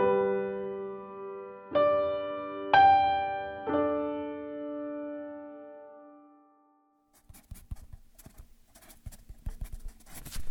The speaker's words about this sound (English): That sound you're hearing right now is the sound of me writing this script with a Black Wing Volume 1.